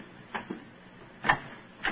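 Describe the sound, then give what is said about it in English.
A door is tried and opened and turns out to be unlocked: a few short, sharp clicks and knocks of a handle and latch come in uneven bursts, with a louder clack near the end and no voices. “Come on, let's try this door.”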